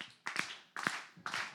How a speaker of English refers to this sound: What about, give me that clap again.